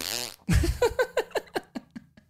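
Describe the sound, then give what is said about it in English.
A voice imitates a fart: a short hum, then a loud blown raspberry that breaks into a sputtering run of about nine quick pops, fading steadily quieter. “Imagine that, but in a fart tone, right? It was like...”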